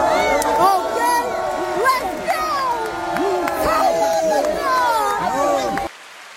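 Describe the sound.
A large crowd cheers and shouts, many voices whooping and calling over one another in a dense, loud, continuous roar before it cuts off abruptly near the end.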